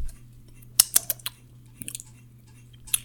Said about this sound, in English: I have Ciroc in here. Let's mix a bitch up. Let's see. Stir the bitch up. You hear that stirring? Stirring action.